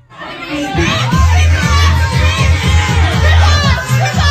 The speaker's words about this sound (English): He burst through the door. They started yelling, "Stripper! Stripper!"